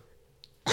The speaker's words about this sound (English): No, I had to cough.